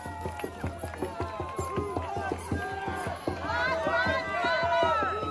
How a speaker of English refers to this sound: Black Lives Matter, they chant. There it is. You can hear it. You can't deny it. Once you see it, once you hear it. Black Lives Matter is the chant of burning the American flag.